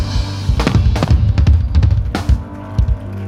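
A church audience claps during a sermon in uneven, scattered bursts, sharp cracking claps overlapping with a low steady rumble underneath, rising and thinning out over a few seconds with no voices.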